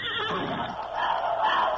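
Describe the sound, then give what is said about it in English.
A pony whinnies in a long, wavering neigh that starts high and shrill, then drops and trembles in pitch, loud and alone for nearly two seconds. “He hears the ponies.”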